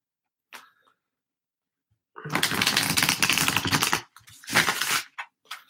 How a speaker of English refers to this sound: And we are using the, I can't think of the name of it, Wildwood Tarot deck. I really appreciate the Wildwood Tarot deck. We're going to give it one more shuffle.